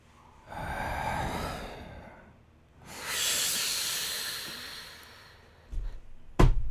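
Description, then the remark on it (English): A person imitates a sloth as part of an animal noise game, with two long, breathy hissing exhales, a low airy sigh followed by a brighter, stronger hiss, then a few short snorts and a sharp pop at the end. “Your no animal noise is a sloth.”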